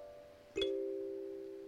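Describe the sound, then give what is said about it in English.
A two-note doorbell-style ding-dong chime played on a small instrument of metal resonating over a wooden block: one tone rings, then a lower note is struck and sustains, fading slowly. Clear, with no voices. “It sounded like my mama's doorbell.”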